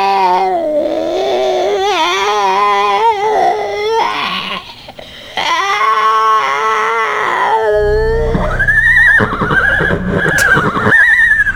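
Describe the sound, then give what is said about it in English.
Horses neigh and whinny repeatedly, loud, with long wavering calls rising and falling in pitch, ending in a sharp, higher-pitched whinny over a low rumble. “What are you doing here and where are my horses?”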